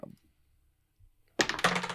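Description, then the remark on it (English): Dice clatter and tumble across a hard tabletop after a quiet pause, a loud rattling burst that keeps skittering for about half a second, rolled for a dexterity saving throw in a tabletop game. “Oh, I rolled the wrong dice.”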